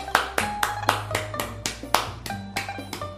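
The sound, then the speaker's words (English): A hand-clapping sound effect: about a dozen sharp hand claps in a steady, even rhythm, moderately loud and without any voices, over a faint sustained tonal hum in the background. “Who on earth is clapping their hands? None of us have even moved a finger. They must have misplayed the sound effect here.”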